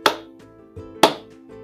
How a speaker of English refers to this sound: Spoiler warning. I'll give two claps, and then I'm going to go.